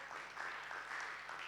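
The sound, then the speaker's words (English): An audience claps together near the end of a church service in a steady, dense wash of applause, sustained and moderately loud throughout with no voices standing out. “God bless you for your clap.”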